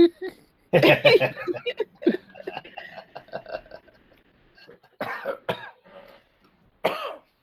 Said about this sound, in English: Oh god, it coughs too. But, what the fuck is wrong with this dog? Yeah, Spot is nuzzling your leg and coughing and making dog-like sounds.